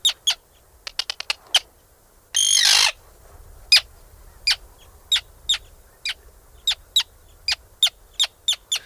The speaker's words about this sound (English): Artic Terns have an electric call. It's a crackling electric call.